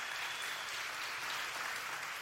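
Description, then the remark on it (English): A church audience applauds steadily during a sermon, many hands clapping together in a dense, even roar of claps that holds at a constant loudness throughout, with no voices standing out. “Y'all clap for that.”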